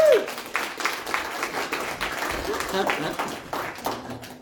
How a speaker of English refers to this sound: It's great when the little ones clap, too.